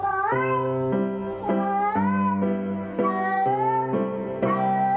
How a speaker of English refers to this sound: Here's another one where another cat warbles a waltz.